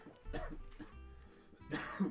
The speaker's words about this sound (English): I took like pills that were supposed to make me cough better, but I cough think cough better. But I think they're just making me cough more.